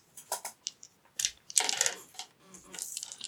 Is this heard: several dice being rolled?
yes